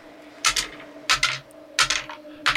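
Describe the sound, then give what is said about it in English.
Several handfuls of six-sided dice, rolled as ten six-sided dice for a fireball trap's damage, clatter across a hard table in four quick bursts, each a busy rattle of small clicks, fairly loud, with no talking. “It's a lot of dice.”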